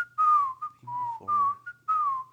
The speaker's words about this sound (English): but that whistling part definitely makes it memorable. When I read that fact about it, it popped into my head immediately. I didn't have to summon it at all. So I think it's something everyone can sort of, you know, hear in their heads.